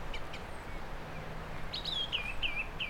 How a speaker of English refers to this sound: Another song thrush. Actually see him straight away, he's sort of gleaming at the top of a tree, white breast.